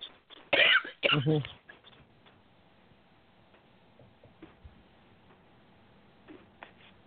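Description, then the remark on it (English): Two loud, harsh coughs burst out in quick succession, followed by a few softer throat-clearing sounds and faint clicks. “Sorry, I'm having trouble. I might have to do you need some cough syrup?”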